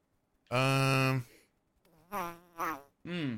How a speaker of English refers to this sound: Nervous fart.